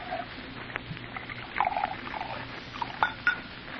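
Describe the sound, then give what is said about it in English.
Bourbon poured into a glass: a soft, uneven trickle of liquid with a few small glassy clinks and taps scattered through it, fairly quiet and with no talking. “Bourbon. You pour. I don't know when to stop.”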